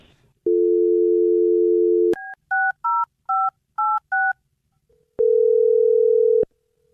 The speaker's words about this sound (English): Okay, here we go. I'm dialing the phone number right now.